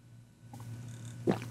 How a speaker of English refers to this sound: By the way, when I swallow a burp, do y'all hear that? When I take a gulp? Okay. Hold on. Can you hear this?